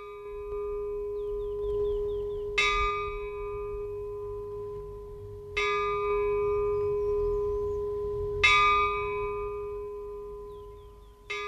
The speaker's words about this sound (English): That is the bell of the chapel of Saint Bernadette in the Cité de Secours Saint-Pierre. And the Cité de Secours is something quite new in Lourdes.